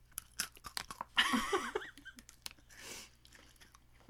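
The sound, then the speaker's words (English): Crisp crunching of Pocky biscuit sticks, a Japanese snack, being bitten and chewed, a rapid series of sharp snaps and crackles with brief pauses between bites, loud. “We're crunching on Pocky.”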